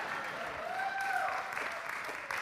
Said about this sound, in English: Yeah, keep clapping because they still got a little ways to walk. So there'll be this uncomfortable lull. So, keep clapping again.